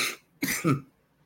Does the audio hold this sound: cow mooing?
no